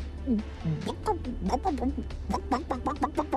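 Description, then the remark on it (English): A person's voice imitates a chicken, making a quick, uneven string of short clucking syllables, with no other sounds around it. “Mama, what does the chicken say?”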